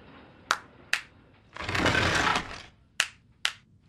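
Two sharp hand claps open the entrance to a secret headquarters in a dead-end alleyway, alien technology called the Clapatron, then a swelling burst of rough, grinding noise lasting about a second, followed by two more crisp claps. No one speaks.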